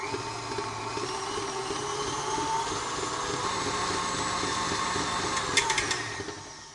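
An electric mixer creaming cookie batter in a bowl whirs steadily at high speed, a continuous motor hum with a buzzing whine, and a few sharp clatters of the beaters near the end. No one speaks.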